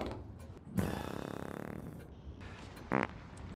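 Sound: fart sound effect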